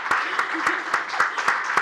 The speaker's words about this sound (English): So I want to thank the English department. You guys are the best. Can we give a round of applause to the English department?